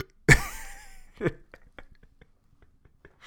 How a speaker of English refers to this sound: This stuff makes you burp, man alive.